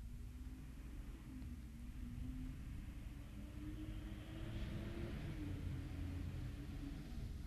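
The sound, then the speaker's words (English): Cars and trucks rumble past outdoors in light rain with leaves blowing, a low, steady traffic drone with a faint engine hum that swells slightly midway. A voice briefly speaks one word. “You can probably hear some of the cars and trucks driving by in the background.”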